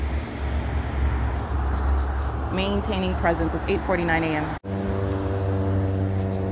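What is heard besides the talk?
airplane flying overhead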